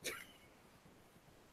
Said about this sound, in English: The symphony of barks, gotta love it.